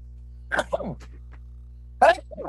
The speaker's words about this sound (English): Oh, I'm going to sneeze hard.